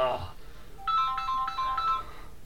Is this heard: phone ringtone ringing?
yes